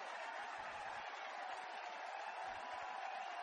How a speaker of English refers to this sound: Listen to that crowd. 71 for Tiger.